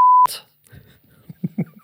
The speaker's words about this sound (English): I can beep every time I say... I can beep it. That's fine.